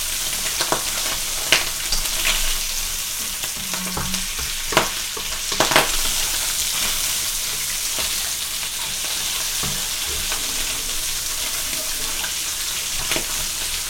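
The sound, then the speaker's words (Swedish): Boiled pork fries in a hot pan, sizzling steadily with a dense crackling hiss and splattering, occasional louder pops and a few clinks of a utensil stirring. “Ni hör ju hur det fräser på här.”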